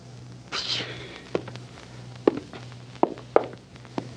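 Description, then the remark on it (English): Slow, uneven footsteps of a person backing up at gunpoint, about five soft thuds spaced irregularly, fairly quiet, after a brief rustling scuff, with a low steady hum underneath. “Start backing up. Go ahead, back up.”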